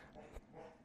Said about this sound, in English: You might hear the dogs scrapping again in the living room. I promise they're fine.